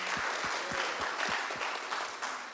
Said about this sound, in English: Amen? Amen. You can clap for that.